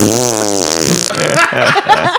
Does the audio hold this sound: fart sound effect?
yes